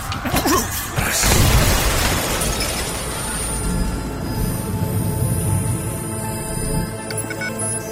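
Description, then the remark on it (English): A loud blast erupts near the start, followed by a sustained, heavy rumbling roar that fades slightly toward the end, like a large explosion with debris and echoing aftermath. “What's with all the explosions?”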